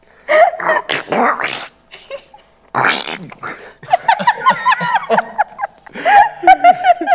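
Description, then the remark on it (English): A person imitates Donald Duck's voice, producing loud, raspy, squawking bursts of garbled pseudo-speech in several spurts separated by short pauses. “Apparently Donald Duck's not feeling well today.”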